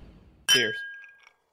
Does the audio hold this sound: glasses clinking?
yes